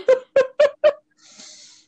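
A cat gives four quick, high-pitched meows in a steady rhythm, fairly loud, followed by a brief soft breathy hiss.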